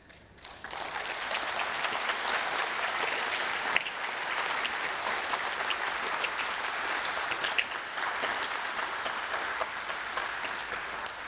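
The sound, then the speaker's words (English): An audience at St. Lawrence applauds steadily, a dense wash of many hands clapping that starts abruptly and holds at an even, fairly loud level for about eleven seconds without any speech. “I didn't get a clap.”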